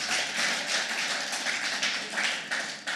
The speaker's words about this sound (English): Can we just give a round of applause for Jesus, for the worship team?